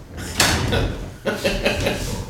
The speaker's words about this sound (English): That noise. I'm rolling around here in a chair at the world headquarters, and I need a better chair.